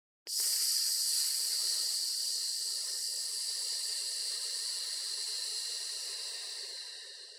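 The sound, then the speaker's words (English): A long, steady hissing exhale through the teeth, done as a breathing exercise after a deep breath in through the nose and hissed out until no breath is left. It starts abruptly and holds a bright, airy tone for about seven seconds before slowly tapering off. No talking. “And then I want you to hiss it out.”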